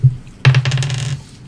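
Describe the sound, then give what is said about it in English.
Dice clatter and tumble across a hard table surface, a short burst of rapid rattling clicks that fades out within about a second, fairly loud, with no talking. “I'm going to get the three to hit dice to roll.”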